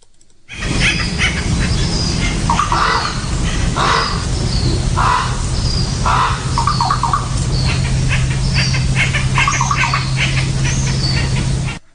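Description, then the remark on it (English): Crows caw repeatedly in the morning in harsh, spaced calls against a steady outdoor background hum, with fainter chirps and woodpecker tapping mixed in throughout. “That was the teaser sound, and that was woodpeckers and crows talking in the morning. Those were the crows going and caw caw.”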